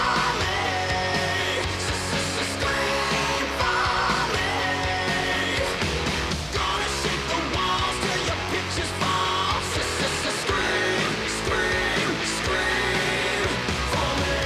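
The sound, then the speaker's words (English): A band's new rock single plays loudly and steadily throughout, with driving drums, heavy guitars and a strong low end filling the mix; there is no talking over it. “But this is the next single.”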